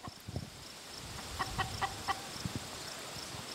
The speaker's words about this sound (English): Now, these ladies, they're two-legged and they have these red combs. They're chickens. They're coming towards us.